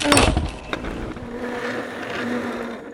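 A door barricaded from inside with trash cans and stacked chairs is rammed open during a search under a warrant: a loud crashing thud opens, a second knock follows, then a long grinding scrape and rattle of the things shoved along as it slowly fades.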